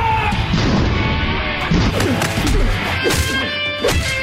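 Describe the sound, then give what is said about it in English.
A door is forced open with a series of heavy, loud crashing blows, three or four strong impacts standing out over a dense, continuous rumbling clatter. “I can feel it giving.”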